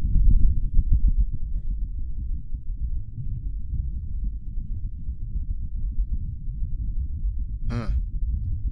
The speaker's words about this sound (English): Here's the, I guess, the second time someone recorded something on Mars from Friday afternoon. Okay, here we go. This is nothing like we just heard. This is real. The wind from Mars.